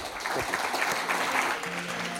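An audience claps steadily in a dense, continuous round of applause, moderately loud throughout, with a faint low hum entering near the end.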